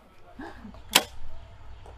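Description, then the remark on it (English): A single sharp thwack of an arrow striking a foam archery target, crisp, with faint voices murmuring quietly before and after the hit. “So on some of them, just hearing the sound of that foam is super rewarding.”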